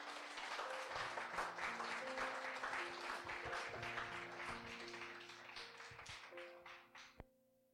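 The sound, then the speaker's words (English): A church audience applauds the Lord after a prayer, a dense wash of many hands clapping steadily with a few sustained musical tones underneath, gradually thinning and fading out toward the end, then one sharp tap. “Let's give the Lord the loudest clap offer that we can give Him today.”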